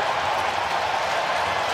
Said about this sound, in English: And the Coyotes, for the second time on this road trip, have won it in overtime. The cheering you hear is in Buffalo. That is not... Yeah, that's a road game.